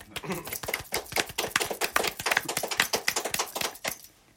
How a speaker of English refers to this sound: And with that being said, we also coming to you live from the Social Beats Jam Room. Jam Room, Jam Room, Jam Room. Actual claps.